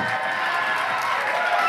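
A crowd applauds steadily, a dense wash of many hands clapping at once, fairly loud and continuous with some cheering mixed in.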